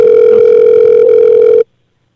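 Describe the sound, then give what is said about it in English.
A steady electronic telephone ringing tone on a call, loud, holding one unbroken pitch for about a second and a half before cutting off abruptly into silence. “It stopped ringing.”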